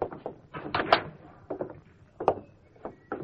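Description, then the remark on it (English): A wooden door at the back of a pool room opens with a rapid series of hollow clunks and creaks, uneven in rhythm and moderately loud, with no voices. “Right through that door, Doc.”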